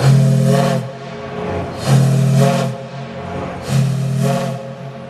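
A steamboat's steam whistle sounds three loud, deep blasts in a steady rhythm, each about a second long with a breathy, harmonic tone and hissing steam between them.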